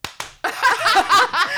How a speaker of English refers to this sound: Wait, you clap and I'll clap.